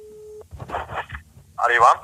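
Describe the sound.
A short, steady telephone ringing tone sounds on the line while a call is placed from ICA-handlarna, then cuts off as muffled voices start talking over a faint phone-line hum.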